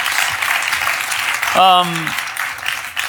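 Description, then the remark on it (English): An audience claps steadily for about three seconds, a dense even patter throughout, with a brief rising cheer or whoop from someone partway through. “Can you give yourselves a round of applause for being awesome?”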